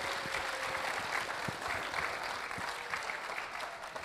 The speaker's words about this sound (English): Give them a round of applause and we'll get some more.